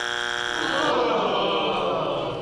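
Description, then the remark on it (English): A loud, harsh quiz buzzer blares continuously for over two seconds, a steady nasal drone rich in tones with no pauses and no talking over it. “I was waiting for you to buzz in.”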